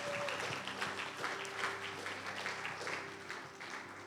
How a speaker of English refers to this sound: Come on, let's give a welcoming clap.